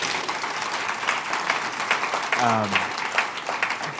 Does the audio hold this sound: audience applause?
yes